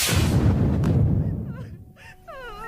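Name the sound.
fireworks exploding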